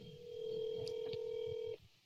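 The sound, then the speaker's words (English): A steady electronic phone tone sounds clearly for about a second and a half as a call is placed from a phone, then cuts off abruptly, leaving faint background noise. No one speaks. “I'm calling him.”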